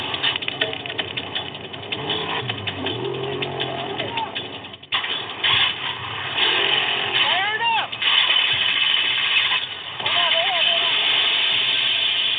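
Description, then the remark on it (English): A trophy truck engine cranks and catches after a thrown serpentine belt at race mile 5 of the 2015 SCORE World Desert Championship, then runs rough and revs unevenly, with muffled voices shouting over the constant mechanical noise. “manages to get the truck up and running again, but just like that, the number one trophy truck has fallen back 2 positions.”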